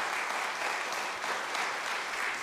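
A crowd applauds steadily to thank a soup kitchen volunteer for her work, many hands clapping in a dense, even wash of sound that holds at a constant level throughout, with no voices breaking through.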